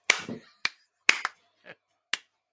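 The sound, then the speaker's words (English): Someone claps at a fly: five or six sharp hand claps in quick, irregular succession. The snappy slaps are fairly loud, with one softer clap near the end. “Sorry, there's a fly here. I'm not clapping you.”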